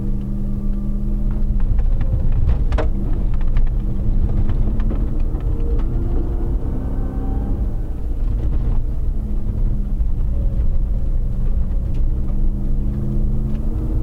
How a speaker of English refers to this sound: listen to the engine as Josh is powering this thing around the corners and up the hill